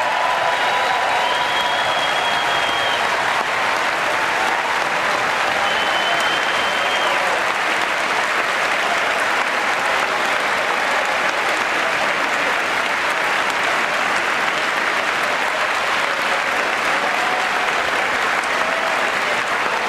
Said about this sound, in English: Now they're excited, they're applauding. Because why? Because they're applauding themselves.